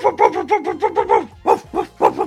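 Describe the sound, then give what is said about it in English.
A big dog barks loudly at people outside a grocery store, firing off a quick run of about eight barks, pausing briefly, then letting out a few more. “Big dog barked at us. It looked like a bear to me.”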